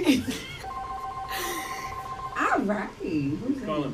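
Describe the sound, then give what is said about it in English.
A telephone rings with an incoming call to a live on-air show, a steady electronic tone for a couple of seconds, clearly audible, with people talking just before and after it. “Who's calling back because y'all talking shit about it? We got a new this is phone.”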